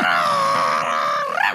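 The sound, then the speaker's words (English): A human voice imitates an angry creature roaring with crystals in its mouth, a sustained, strained growling bellow lasting over a second, muffled as if through a full mouth, ending in a rising gurgle. “What does it sound like as it's roaring angry with crystals in its mouth?”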